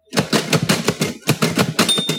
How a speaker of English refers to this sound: So I remember many times carrying a Braille writer from class to class, and you got a good workout because they're not light. They're very heavy and they're loud. Click, click, click, you're typing on it.